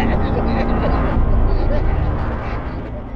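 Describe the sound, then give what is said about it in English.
Steady, loud low rumble of a car's interior while driving, with continuous road and engine noise filling the cabin for the whole stretch without any break. “Back in the car again.”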